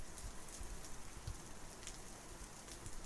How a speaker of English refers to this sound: So today, it's raining outside.